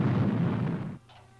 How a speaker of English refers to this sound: Oh! And a huge explosion somewhere.